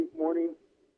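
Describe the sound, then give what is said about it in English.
A brief voice over a phone line, followed by a fainter, smeared repeat trailing off as an echo for about half a second. “You hear me echo.”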